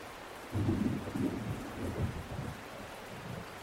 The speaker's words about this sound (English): And one of the things I love most about the rain is just listening to it. Have you ever spent some time just listening to the rain? Let's listen right now.